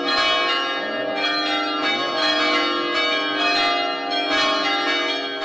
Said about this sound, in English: Pop the rings in your pocket, because I can hear wedding bells in the background.